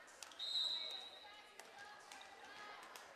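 A hand slaps a volleyball a few times, sharp, irregularly spaced smacks over a hollow gym ambience with faint crowd murmur and a brief high tone early on.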